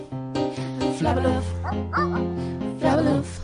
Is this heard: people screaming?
no